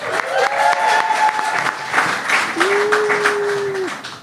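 An audience applauds a guest being introduced, a dense steady wash of many hands clapping throughout, with a couple of sustained whistle-like tones rising out of the crowd noise.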